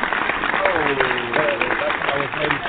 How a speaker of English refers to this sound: Thank you. Yes. All right. Clap it up, everybody.